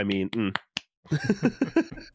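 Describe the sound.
A couple of sharp, crisp claps ring out in a brief pause, with voiced, speech-like sounds just before and continuing afterward.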